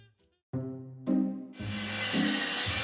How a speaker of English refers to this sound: The sound of power tools is like music to Karen Gregory's ears. I mean, it's coming to life right in front of us.